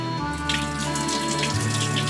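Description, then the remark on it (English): Water pours steadily for a couple of seconds, a continuous splashing gush into a sink or basin, as the water is drained from pasta cooked in a microwave, with no voices. “So we just drained it and cooked it in there.”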